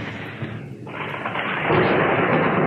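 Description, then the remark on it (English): A thunderstorm roars with dense, steady rain and a rolling rumble of thunder that briefly dips, then swells louder and fuller toward the end. No voices. “It says, suddenly a furious storm came up on the lake.”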